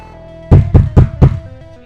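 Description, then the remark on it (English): Four heavy, evenly spaced bangs as someone hammers on a door at night, in quick succession, loud, with soft sustained music playing underneath. “one night, not long after you met up with Murphy, you wake to someone hammering on your door.”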